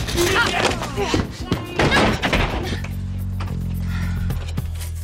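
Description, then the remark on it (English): A rolling office chair clatters and bumps, with several loud thuds and rattles over the first couple of seconds before settling into a steady low hum. “Rolly chair.”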